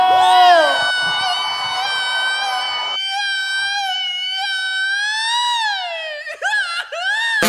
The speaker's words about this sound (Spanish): Y el que tenga una cerveza en la mano, que se aviente un pinche grito mexicano.